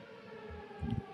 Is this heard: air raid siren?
yes